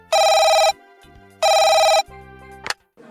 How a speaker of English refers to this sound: Sister White is woken in the middle of the night by a phone call.